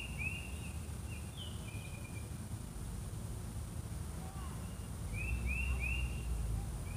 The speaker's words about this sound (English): And you can listen to the bird song too.